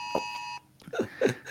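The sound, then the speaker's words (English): A phone's Amber alert emergency tone blares loudly for about half a second, a harsh, steady electronic pitch that cuts off abruptly before a person starts talking. “Amber alert. Yeah, that happens.”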